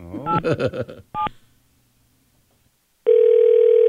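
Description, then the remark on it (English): A phone call is placed to the MTA New York City Transit Travel Information Line: a quick run of beeping keypad tones, a brief pause of near silence, then a loud, steady electronic ringing tone that holds to the end. “We're going to call them right now.”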